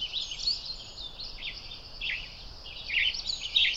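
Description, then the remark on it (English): A western tanager in tree branches gives a few short, raspy call notes at irregular intervals over a steady high outdoor hiss. The notes grow slightly louder toward the end. “A western tanager.”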